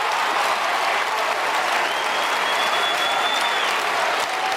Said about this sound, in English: And they all just cheer. Idiots.